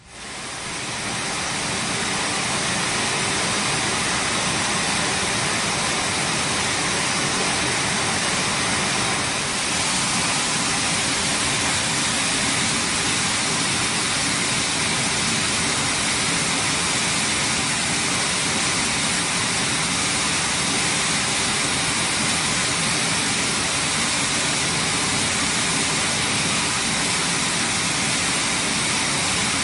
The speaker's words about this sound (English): I want us to just watch a video of what this looks like real fast. It's not very long. And just listen to the water as it goes over this waterfall.